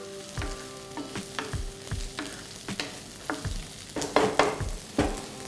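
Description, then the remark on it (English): Red, green and yellow bell peppers and onion sizzle in a hot pan under a steady frying hiss, with repeated scraping and clinking strokes of a spoon gently stirring them every half second or so. No one speaks. “the red, we've got the green, we've got the yellow, and we have the onion. Give it a gentle, just a gentle stir, you know. Don't overcook the bell peppers and all.”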